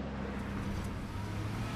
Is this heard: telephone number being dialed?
no